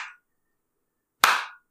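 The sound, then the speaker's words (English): A clap's fading tail, then a pause of about a second before one loud, sharp burst of hands clapping together that rings briefly as it dies away. No voices. “Everybody, everybody, clap those hands!”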